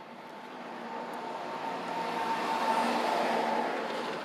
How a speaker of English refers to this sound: Now, a truck is coming, so I'm going to stop talking. Seems like a truck.